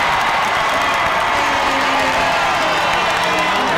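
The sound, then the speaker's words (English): A large crowd in a basketball arena erupts in loud, sustained cheering after a three-point shot ties a women's game at 20, a dense roar of voices and whoops that holds steady for the full few seconds without letting up. “Tie this game at 20 and get this large crowd back into the game.”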